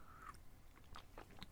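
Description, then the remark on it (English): A short, quiet slurp of coffee, followed by soft mouth sounds and swallowing clicks, with no talking. “I'm going to have a little slurp of coffee.”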